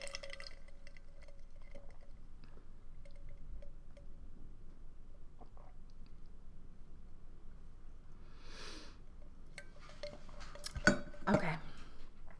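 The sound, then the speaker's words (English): Someone sips a drink in a quiet stretch, with a soft slurp, a faint clink of glass and a brief louder rustle and gulp near the end. No one speaks. “Hold on. I need to sip.”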